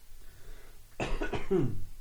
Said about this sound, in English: Pardon me for all the coughing.